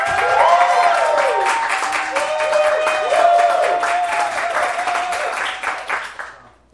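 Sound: audience cheering and applauding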